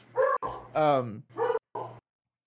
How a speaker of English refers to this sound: Whose dog is barking?